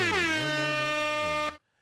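Air horns given for Ron Perlman and Fran Drescher: a single loud, brassy air horn blast holds steady for about a second and a half after a brief upward swoop in pitch, then cuts off sharply into silence.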